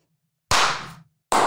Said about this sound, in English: Slow clap. Thunderous applause. Hey! Nice. That's one of the stock sound effects.